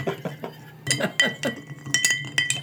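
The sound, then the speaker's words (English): A metal cocktail spoon clinks repeatedly against glass in a quick, uneven series of bright, ringing taps, some with a short high-pitched ring after each strike. “Oh, here's my new cocktail spoon.”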